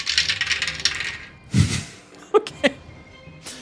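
Percentile dice, rolled during a tabletop game to decide which of six people an arrow hits, rattle briefly, then drop onto a table with a thud and a few sharp, bright clacks as they bounce and settle, fairly loud, with no one speaking.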